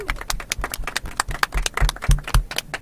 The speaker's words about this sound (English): So we're going to say thanks to everyone who's come to see us up here, the listeners who have come to see us. So a big round of applause to all you guys.